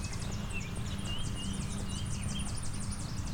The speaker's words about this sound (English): As you can hear, I'm being surrounded by Tennessee warblers.